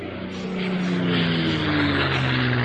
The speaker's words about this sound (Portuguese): porque tá vindo um avião, eu tô esperando por isso, pra não atrapalhar.